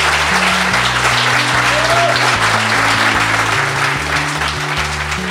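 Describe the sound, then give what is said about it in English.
Sustained, dense applause from a sizeable audience for Matt Rogers at a What It Takes event fills the whole stretch at a steady loudness, with a simple bass-heavy music line playing underneath. “With that, please give a massive round of applause for Matt Rogers.”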